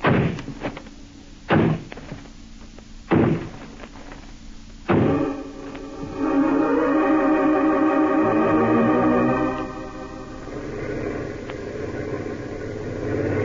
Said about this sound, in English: This is the place. It's a dance hall and tavern. They won't open up for us. All right, men. Smash down that door.